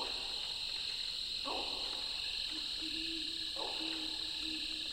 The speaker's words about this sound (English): That was a great horned owl hooting in the distance.